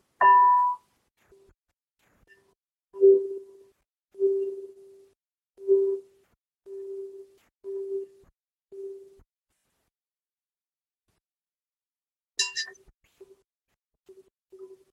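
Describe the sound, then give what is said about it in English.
A crystal singing bowl, the throat chakra bowl, is played, ringing with a clear, pure tone that swells and fades in repeated pulses, then a brighter strike rings out near the end. No voices, just the steady humming ring. “But this is the throat chakra bowl. So I'm just playing that one now.”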